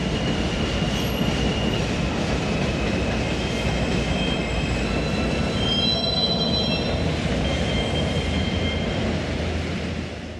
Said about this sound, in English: My first apartment was a sublet in Bushwick, and my bedroom window was right next to the elevated subway tracks for the M train. Like, right next to the tracks.